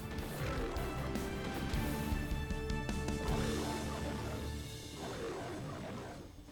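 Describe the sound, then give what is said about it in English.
A robotic lion roar from the Beastex King Zord, a Lion Zord, in Pine Ridge Woods outside Coral Harbor: loud, sustained for several seconds with a gritty, mechanical edge and crashing clatter underneath before it slowly fades. “It really is a Lion Zord. Just as majestic as we'd hoped.”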